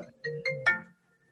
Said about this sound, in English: One of the problems is that Ricky is too busy and too popular, as you might be able to hear repeatedly when he gets phone calls in the middle of episodes.